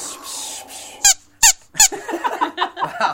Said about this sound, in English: We actually have a crocodile in the office. We have a crocodile that squeaks in the office.